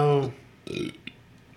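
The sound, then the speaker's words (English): A man lets out a loud burp that trails off, followed by a rougher, breathy second belch and a short throaty click before near silence. “I'm just burping. He's burping.”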